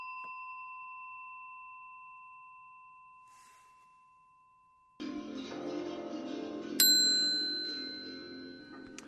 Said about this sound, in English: That's a bell you rarely hear, because it's down in my basement bar, and that's where I happen to be,